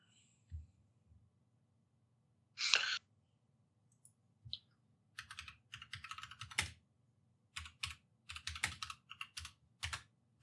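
Quiet typing on a computer keyboard with irregular bursts of clicky keystrokes, a few isolated taps early on and then denser clusters, over a low background hum.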